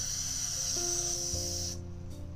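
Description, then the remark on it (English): A continuous aerosol spray hisses steadily for nearly two seconds as it is added to a home experiment mixture, then cuts off abruptly, with a faint low hum sustained underneath. “Then I'm gonna add some glued free spray.”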